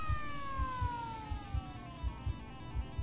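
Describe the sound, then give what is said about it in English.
A police squad car siren wails steadily as the car arrives, its tone slowly sliding downward in pitch, while a low, regular thumping pulse beats underneath about twice a second. No voices. “And with no backup, no spare bullets, and no time to unclog the chamber, by 7:04 p.m., Carlos had fled through the back door just as the squad car had arrived.”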